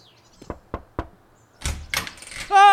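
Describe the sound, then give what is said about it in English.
Three evenly spaced firm knocks on the front door of the house next door, followed by a moment of rustling movement and then a short sustained tonal sound at the end. “Let's try next door.”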